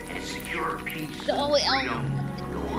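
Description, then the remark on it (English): Whiskey glugs and trickles into a glass, the pouring tone rising briefly as it fills, while voices murmur in the background throughout. “Is pouring a glass of whiskey.”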